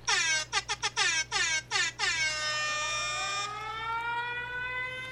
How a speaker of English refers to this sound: The siren goes really long. I was going to say, we hate the siren outside. But enjoy the siren inside.